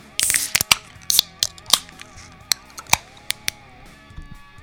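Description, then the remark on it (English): Beer cans being cracked open: a burst of fizzy hiss at the start, then a quick series of sharp, crisp metallic snaps and clicks spread irregularly over a few seconds, with a faint steady hum underneath. “So let's go, let's crack the beers.”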